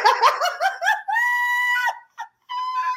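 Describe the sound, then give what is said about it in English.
A nervous female dog vocalizes, a quick run of high yips flowing into a long, steady whining howl, a brief pause, then another sustained whine. “You're making the dog nervous.”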